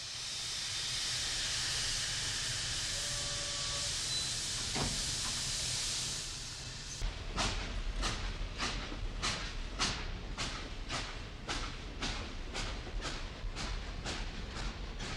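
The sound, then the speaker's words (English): A loud, steady hiss of released steam fills the first half, then a steam locomotive starts chuffing in sharp, regular bursts as it pulls away from Paddington Station in London, with no voices. “We took the train from Paddington Station an hour later, as we had promised, and began our journey to Walton-on-Walton, a pleasant, aristocratic little village”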